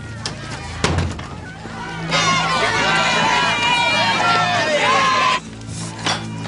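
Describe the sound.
A restless crowd murmurs and clamors, many overlapping voices swelling into a loud, dense hubbub for a few seconds before dropping back, with a dull thump early on.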